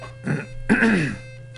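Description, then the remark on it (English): A fairly loud throat clearing in two quick rasping bursts, the second longer and harsher, heard alone over a low steady hum, at the start of a radio broadcast from Mutiny, 2781 21st Street. “Forgot to clear my throat.”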